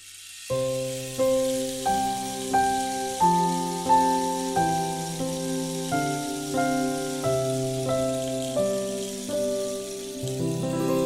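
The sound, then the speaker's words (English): A soft, steady rain stick shower, added by a tablet, patters continuously beneath a gentle lullaby melody of slow, evenly spaced tones, with no voices. “Please add a rain stick to my lullaby.”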